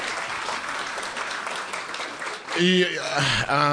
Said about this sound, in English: Give him a round of applause just for turning up Sunday morning.